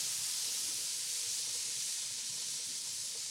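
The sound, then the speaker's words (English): Kebab meat sizzling steadily on a hot grill, a continuous hiss that holds even for a few seconds with no voices over it. “Okay, I'm just going to get the sizzle.”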